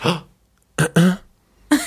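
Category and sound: human body sound, a cough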